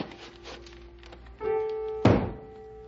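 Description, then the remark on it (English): A broom thumps hard against the ceiling once, a heavy wooden knock that stands out over a steady droning tone and some faint earlier tapping. “Where's that old broom of mine? Maybe if I bang on the ceiling, he'll take the hint and go play ball or something.”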